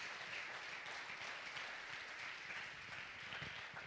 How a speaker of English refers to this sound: Give God a hand clap.